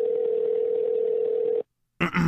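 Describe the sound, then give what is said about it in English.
A phone line's ringing tone: one steady, buzzing electronic tone held for over a second and a half, then a brief silence before another sound cuts in at the end. “Ringing.”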